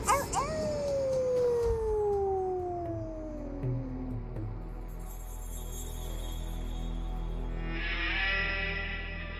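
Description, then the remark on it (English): A single loud, drawn-out wolf howl glides steadily downward in pitch and fades after a few seconds, leaving a low rumbling background and a faint airy hiss. “The wolf begins to circle the boy.”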